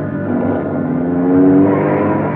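A car engine roars and revs steadily during a chase, its pitch rising and swelling loudly around the middle before easing slightly, continuous with no voices.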